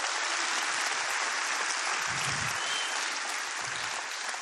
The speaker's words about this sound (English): And for this, she's getting applause.